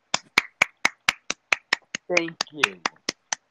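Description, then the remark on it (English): A steady run of about fifteen sharp, crisp hand claps at a quick even pace for about 3.5 seconds, with a brief voice breaking in partway through while the clapping continues. “Here, I'll give you a 3.5 second clap for a respectable pick.”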